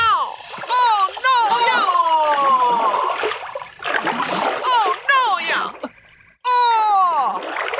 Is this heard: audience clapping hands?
no